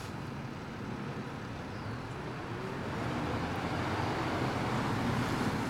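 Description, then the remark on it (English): A UPS delivery truck slowly makes a U-turn on a street, its steady engine rumble and road noise swelling slightly louder partway through, with no voices. “Ooh, that UPS guy is not good at U-turning.”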